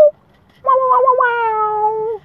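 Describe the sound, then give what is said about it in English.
A person vocally imitates an air horn, producing a single long, nasal, wavering tone that comes out sounding like a drawn-out cat meow, loud, about one and a half seconds. “So that sounded more like a cat than an air horn, but yeah.”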